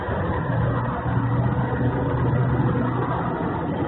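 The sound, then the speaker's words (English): A loud, steady car engine rumbles at a car show at the fairgrounds, a deep droning hum with a rough roar layered over it, holding a nearly constant level with no voices; the car comes back around every 2 to 4 minutes. “The car shows are absolutely the worst.”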